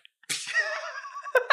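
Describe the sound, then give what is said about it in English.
A voice mimics an arrow striking a man in the back: a sharp, breathy burst opens into a wavering, whistly tone that slides gently downward for about a second, then ends in a quick percussive smack. “This guy's in the back, and the arrow is just like...”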